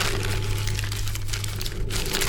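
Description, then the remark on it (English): Dry, brittle, yellowed paper crackles and crinkles continuously as an old scroll, more than 1,000 years old, is slowly unrolled, with dense papery rustling and small cracks over a low steady hum. “The paper had turned yellow and was very brittle.”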